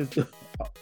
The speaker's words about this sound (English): While he's coughing.